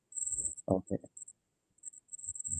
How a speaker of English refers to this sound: I keep hearing some background stuff. Is that crickets in the background?